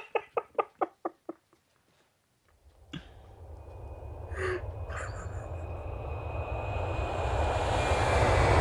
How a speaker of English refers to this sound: Oh, that's a very fast plane. That's like a car plane. It's so fast.